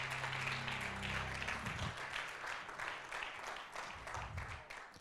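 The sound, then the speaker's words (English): A large church audience claps hands for Jesus in a steady, dense burst of applause lasting several seconds, with a low sustained hum underneath at the start. “Clap those hands one more time for Jesus.”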